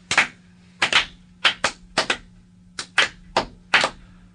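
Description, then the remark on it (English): Four hand-cranked mechanical clapping hands, cranked slowly by hand, clack out about a dozen sharp, dry claps, often in quick pairs, at a slow, uneven pace over a faint steady hum, with no voices. “it's four mechanical hands. And it's not automatic. That's the other thing. I have to crank it every single time that we do this.”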